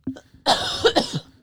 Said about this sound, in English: You got that dry cough? I do. That's corona, bitch. I haven't had a dry cough all week until I came here.